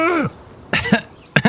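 cough and throat clearing

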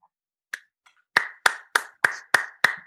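hands clapping

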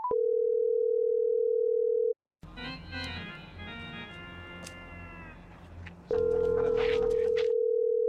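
telephone dial tone

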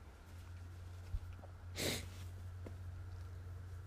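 blowing nose

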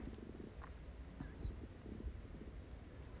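cat purring

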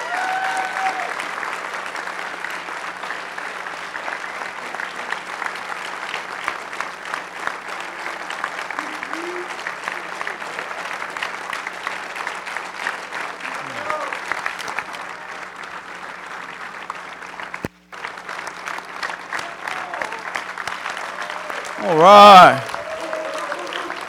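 audience clapping applause

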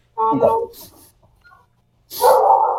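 angry dog barking

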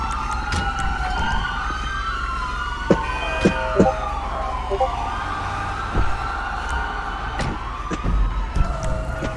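emergency vehicle sirens approaching

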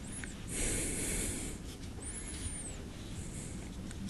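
heavy breathing

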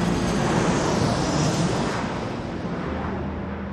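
airplane engine

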